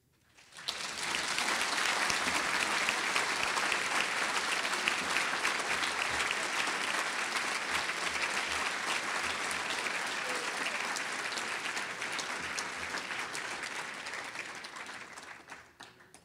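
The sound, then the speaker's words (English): An audience breaks into sustained applause, a dense, steady wash of many hands clapping that holds loud for about fifteen seconds before tapering off at the end. No one speaks over it. “So applause is not a question.”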